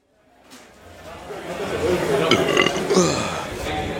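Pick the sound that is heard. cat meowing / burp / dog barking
burp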